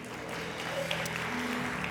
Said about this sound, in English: I'm so happy to see all of the members in the house this morning. Would you give yourself a big hand clap one more time?